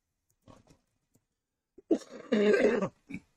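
A harsh bout of coughing from someone with a bit of a cold: a faint throaty rasp, then a burst of loud, raspy coughs and one short final cough, with no talking.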